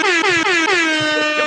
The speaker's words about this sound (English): Hey, nice air horns for that shit. Air horns for me.